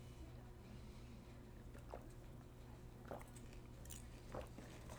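Three soft, wet swallowing gulps spaced about a second apart, close to the microphone, with the Grammys broadcast in the background, over a steady low hum of background noise.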